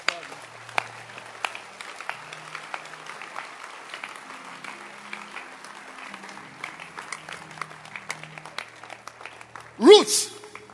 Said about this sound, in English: And, clap your hands.